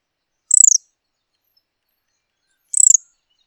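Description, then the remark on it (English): Pale-billed flowerpecker calls from a large flock of tiny pale-billed flowerpeckers feeding on fruit: two short, high-pitched chittering bursts, each a rapid run of sharp ticks, separated by a couple of seconds of silence, clear with no talking. “And to our amazement, these were all tiny pale-billed flower peckers in a large flock, the size I am yet to see again.”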